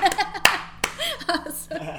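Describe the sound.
A short burst of applause welcoming a guest: a few sharp, loud hand claps at an uneven pace, mixed with excited voices and whoops running underneath.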